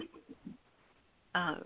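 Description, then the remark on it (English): A faint stretch of muffled voice gives way to quiet, then a single short, loud, rough throat clear bursts in right at the end as the speaker gets ready to read aloud. “That's me clearing my throat, getting ready.”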